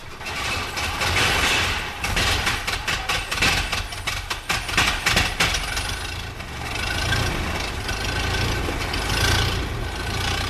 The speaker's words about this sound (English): One car which took part in this year's rally is identical to these. The 60-horsepower 9.2-litre engine is a formidable machine even today.